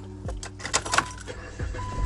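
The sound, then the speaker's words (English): Keys jangle and clink inside a car, a few bright metallic rattles over a low idling hum, with soft thumps of movement around them. No one speaks. “I'm in the car.”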